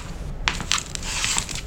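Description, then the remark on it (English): A wooden hat stand collapses in a crunching, splintering clatter, several sharp cracks and knocks tumbling together over a second or so, fairly loud, with no voices. “That hat stand, it's what you might call art.”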